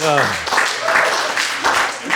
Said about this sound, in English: The energy in the room is undiluted, awkward. The applause is one of pity and confusion.